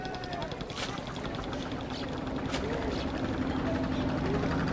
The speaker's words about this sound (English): You can hear all the boats out on the river, ferrying tourists.